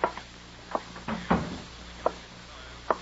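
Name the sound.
door being closed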